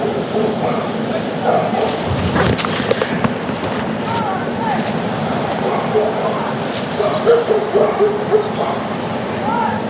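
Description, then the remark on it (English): Dogs bark in short, scattered bursts at a spin fisherman, set against steady outdoor background noise, with people talking faintly. “The dogs don't like the spin fisherman.”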